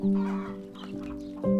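Chickens cluck, with a sustained, tonal call at the start and another near the end and busier clucking in between. No one speaks.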